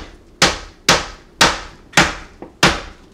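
Potatoes being smashed with a pickling tool: five loud, sharp thumping blows at a steady, roughly half-second rhythm, with one softer tap between the last two, and no voices.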